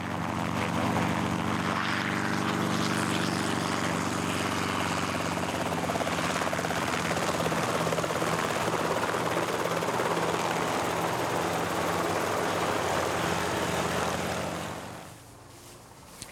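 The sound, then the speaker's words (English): A 2.5-ton helicopter's rotor beats in a steady, loud thrum over a constant engine whine, holding evenly for about fifteen seconds before cutting off abruptly near the end. “as far as we're concerned, lift is what we produce to get 2.5 tons of helicopter up off the ground and accelerated into forward flight.”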